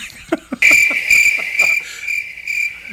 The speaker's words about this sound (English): They gave him the crickets. Gave me the crickets.